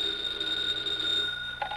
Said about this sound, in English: Later that evening, at the FBI field office for that area, Special Agent Jim Taylor is finishing a report when his phone rings.